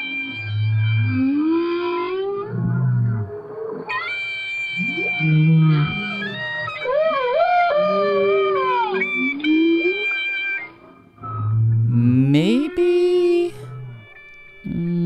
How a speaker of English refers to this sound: The whale kind of extends the note. Whales tend to go ooh, and clarinets tend to go ooh. They play a steady tone, you know. And so the whale was trying to play a more steady note.